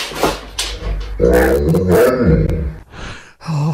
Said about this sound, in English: I'm not sure that is clearly a dog. Chilled to the bone. What? You can't just get out your iPhone and go and claim, "Hey, my dog talked."